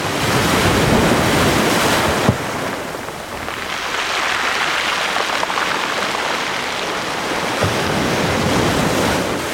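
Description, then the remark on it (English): Ocean waves 2 to 3 feet high break and wash continuously at the shore of Quoddy Head State Park in Lubec, by the red-and-white striped lighthouse, a loud, steady roar of surf with surging swells and gusty wind buffeting the microphone, no voices present. “It sounds wild here today, but this is actually pretty calm. The waves are only 2 to 3 feet.”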